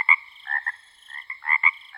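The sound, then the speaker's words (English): A mockingbird mimics frog croaks: a series of short, raspy, buzzing calls in uneven bursts, clear, with no talking. “Their nighttime medley might include the songs of blackbirds, cardinals, house wrens, hawks, and even the sound of frogs.”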